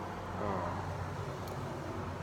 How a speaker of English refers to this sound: sorry, I'm doing this on my front porch, so if you hear cars go by, that's why.